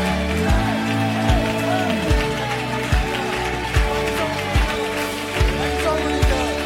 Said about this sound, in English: And if you love God today and you believe it on credit, come on, give him a 10-second hand clap like it's already done. Come on, like it's already done.